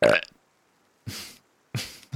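A hearty, raspy burp rumbles in a few loud bursts with short pauses between them, ending in a quick final gulp. No one talks.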